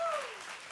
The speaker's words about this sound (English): That deserves a dang clap. Clap your hands, people.